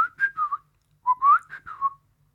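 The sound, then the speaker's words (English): A person whistles two short phrases in imitation of the call of the little owl of central France, each made of a few sliding, mid-pitched notes with a brief pause between them and no talking. “So that's the little owl in central France that goes...”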